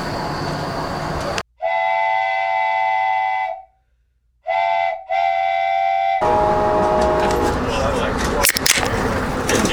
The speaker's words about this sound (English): Can't really hear it pouring, but we're still on the train here, about to stop in Richmond.